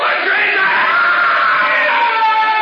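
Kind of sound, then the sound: human body sound, man screaming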